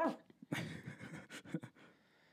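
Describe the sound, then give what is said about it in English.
Someone imitates their dog whimpering, a quick run of breathy, panting huffs and whines over a couple of seconds, with no actual words. “And my dog's like,”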